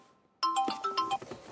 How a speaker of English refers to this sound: Just didn't turn the alarm off.